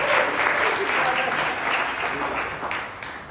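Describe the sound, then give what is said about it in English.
A church audience claps steadily for a great-grandmother in a dense, sustained burst of applause, fairly loud throughout and easing slightly toward the end, with no voices standing out. “Can we clap for a great grandmother in church today?”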